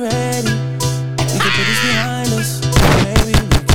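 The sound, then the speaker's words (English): Steady melodic music plays throughout, joined by sharp gunshot sound effects: a few scattered bangs early on, then a loud, rapid volley of shots over the music in the final second. “Putting gunshots over this is funny as fuck.”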